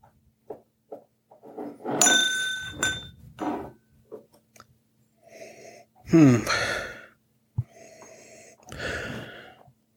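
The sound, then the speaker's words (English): Slurping sips of an alcoholic drink and breathy gasps, with a few light glass clinks and small mouth sounds between them; no talking. “Sips and sounds.”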